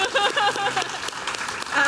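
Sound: audience applause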